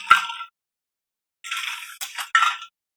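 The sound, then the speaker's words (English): Someone drinks from a plastic water bottle filled with water: a sharp click, then bursts of hissy, sloshing noise with plastic crackles in three short spurts, fairly loud, with no talking. “I'm drinking a very loud water bottle. Can't wait to hear it.”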